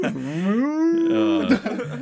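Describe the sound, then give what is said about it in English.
A person lets out one drawn-out "woo" cheer that rises and then holds steady, coming out low and lowing like a cow's moo, followed by a brief breathy trailing sound. “it was supposed to be a woo, but it just came out more weird.”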